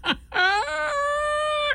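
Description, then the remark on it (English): A person imitates a laughing chicken: a quick breathy burst, then one long, nasal, high-pitched squawk held steadily, loud with no other voices. “Do your laughing chicken.”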